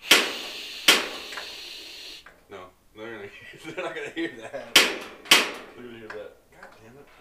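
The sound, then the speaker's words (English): Sharp, loud igniter clicks from a propane heater, being turned on because it is cold, snap out at irregular intervals, a couple early and a couple later, with people talking in between. “Oh, the clicks? Yeah. Well, it's because they can't hear the. Yeah, I'm just turning on propane because it's cold up in this motherfucker.”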